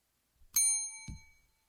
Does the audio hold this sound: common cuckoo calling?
no